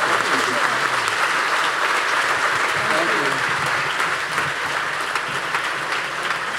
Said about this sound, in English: All right, folks, well, we are going to have a big round of applause for our first round of panelists, and we're going to do a little switch up.